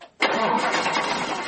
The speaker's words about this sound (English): It looks just like a snowblower. And where your little engine sits, he's got a small block Chevrolet V8.